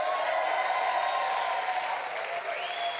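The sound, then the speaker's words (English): A church audience at Turn Point practices the traditional woo with three claps, a sustained, steady woo together with clapping, holding at an even loudness for about three seconds, with one voice sliding upward in pitch near the end. “A Woo 3 Clap Church is when we say something good and we do the traditional woo.”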